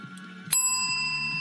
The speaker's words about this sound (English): Oh, the bell, it didn't sound right. Uh-oh. Hang on. Oh, my God. Something's broken on the bell.